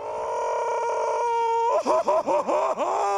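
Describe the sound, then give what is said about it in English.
Patrick Star, the cartoon starfish character from SpongeBob, screams: a loud, steady, high-pitched yell held for over a second, then breaking into a rapid series of wobbling, warbling cries that swoop up and down in pitch. “You are incorrect. That was Patrick Starr from SpongeBob.”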